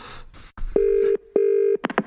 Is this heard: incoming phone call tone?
yes